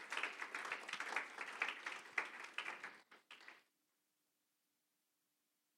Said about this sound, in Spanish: Aleluya, dele ese fuerte aplauso al Señor.